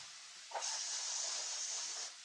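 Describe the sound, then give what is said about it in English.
Water is poured into a hot pan of cooking vegetables, tomatoes and ghost pepper with a sudden splash, then a loud, steady, bright sizzling hiss holds for over a second before easing off. No one speaks. “And now what I'm going to do is add water.”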